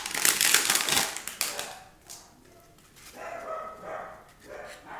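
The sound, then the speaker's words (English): A burst of crinkling, crackling noise as a pack of 1992 baseball cards is opened gives way to the speaker's dogs barking excitedly, a few quick yelps and barks, fairly loud and clustered in the second half. “And we have, the dogs are going crazy.”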